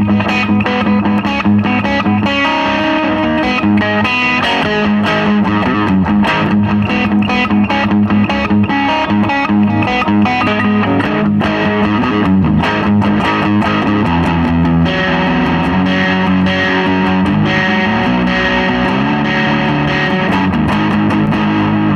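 A distorted electric guitar plays loud, gritty chords with a thick, buzzing tone and steady rhythmic attacks, continuing without pause for over twenty seconds with no voices.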